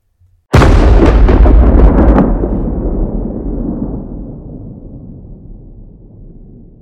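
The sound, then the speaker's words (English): A sudden, loud crack of thunder splits into crackling bursts, then settles into a deep rumble that slowly fades over several seconds. No voices. “That was when the first rumble of thunder drowned out all sound.”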